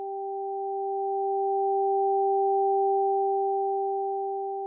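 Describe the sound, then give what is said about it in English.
A high and a low pure sine tone sound together for several seconds, steady and electronic, swelling gently in the middle and easing off toward the end, with no voices. “Did you hear the high and the low tones in the same ears?”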